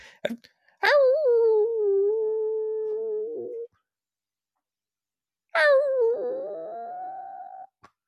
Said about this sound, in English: I'm screaming in rage. It is a howl of like pure hatred now. I am howling with true personal anger towards this version of myself.